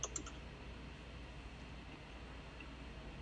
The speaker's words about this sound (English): Excuse my typing.